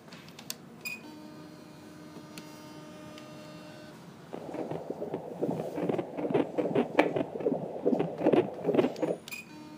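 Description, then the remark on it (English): A fetal heartbeat on an ultrasound monitor: after a few seconds of steady electronic hum, fast rhythmic whooshing pulses start and continue, fairly loud, with no talking. The baby weighs about 2.8 kilograms, roughly 7 pounds. “You just heard the heartbeat of my child.”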